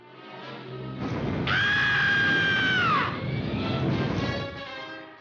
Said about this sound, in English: the only thing I was thinking of at this point was the classic bit of Bugs Bunny and the Rocket screaming as they send him out into space.